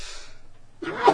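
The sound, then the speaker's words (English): A single sneeze bursts out after a brief quiet stretch, a sharp, loud, breathy explosion with a voiced edge that ends the moment. “Gesundheit.”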